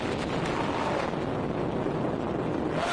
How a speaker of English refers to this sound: These are some of the most intense airstrikes by the Assad government's jets in 3 weeks.